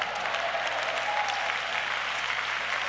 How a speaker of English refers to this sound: I appreciate the 30% of you clapping your hands on that one.